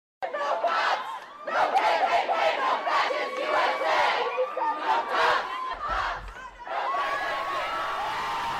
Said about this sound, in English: So they're toppling the monument, destroying the monument, and then cheering like they've done something grand and glorious, and then kicking the statue because, Ma, I broke my toe fighting racism.